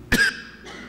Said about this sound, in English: And now I'm going to take a moment to cough.